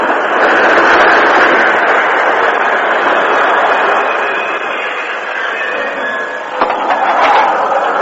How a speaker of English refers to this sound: Some days later, at the railroad station east of Redtown, the westbound express slowed to a stop.